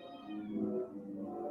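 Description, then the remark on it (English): A single drawn-out cat meow, its pitch sliding downward before holding steady, fairly quiet and heard on its own with no talking. “Why aren't these cats affecting him? Why aren't these cats going in the house?”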